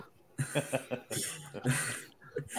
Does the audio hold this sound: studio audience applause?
no